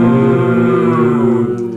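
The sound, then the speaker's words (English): Several people playing a tabletop game moo together in imitation of a Brahmin, a cow-like animal in the game, one loud, sustained, low droning note lasting nearly two seconds that trails off slightly at the end. “One, two, three. Moo.”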